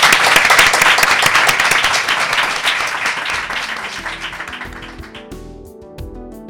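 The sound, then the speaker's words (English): An audience at the Hague Humanity Hub applauds the guests with dense, crackling clapping that stays steady, then thins and fades over the last couple of seconds as a soft musical tone comes in beneath it. “Let's have a big round of applause for our guests.”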